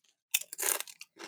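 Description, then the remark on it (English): Loud, crackly crunching of a cinnamon-flavoured fried snack being chewed, a few sharp bursts in quick succession with no talking. “It's way crunchier than I expected. Like, this was, like, fried and then fried 4 more times.”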